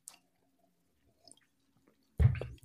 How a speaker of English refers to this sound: They say it's oaky, vanilla-y, chocolatey. I feel like, I don't know why, I have a feeling that I'm going to have, I'm going to experience the oakiness when I take my first sip. Salud. Salud.